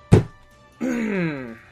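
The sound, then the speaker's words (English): A single sharp, hard slap of a hand on a table during a tabletop role-playing game, with a low thudding body, followed by a drawn-out groaning voice that slides downward in pitch. “Okay, I heard you slapping the table.”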